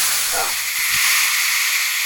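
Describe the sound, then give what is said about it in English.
A loud, steady blast of hissing steam rushes out of an accidentally triggered exhaust valve for about two seconds, bright and airy. A brief murmur of voice sits underneath at the start. “She accidentally triggered an exhaust valve and it sent her flying.”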